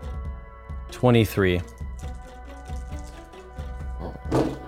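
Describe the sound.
A handful of twelve six-sided dice clatters and tumbles across a tabletop in a quick run of sharp, overlapping clicks, rolled for damage in a tabletop game, while a voice briefly exclaims partway through.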